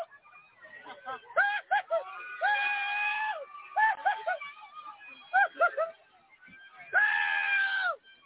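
A chaotic street crowd in Chicago yelling and screaming over one another as people kick, rock and jump on a car, with short overlapping shouts throughout and a couple of long, loud, high-pitched screams rising above the din.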